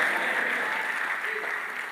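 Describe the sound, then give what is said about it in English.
An audience at a prayer service claps steadily in a dense, continuous wash of applause, with indistinct voices shouting underneath, holding a fairly even loudness throughout. “Come on, clap on and shout.”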